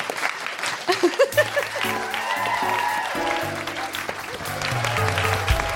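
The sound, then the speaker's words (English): A live audience at the Soho Theatre claps steadily, a dense crackling wash of applause, and after about a second an upbeat theme tune with a low bass line starts and plays over the continuing clapping. “That should be applauded.”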